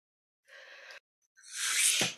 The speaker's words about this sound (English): Well, I thank God I'm in that big sneeze. What was that? That was like, a big sneeze.